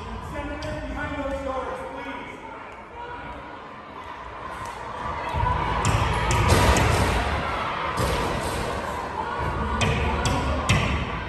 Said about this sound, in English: Rioters showed up at the Arizona State Senate over the weekend and they were attacking the building. Seems kind of insurrection-y. There they are outside the doors and they're beating on the doors.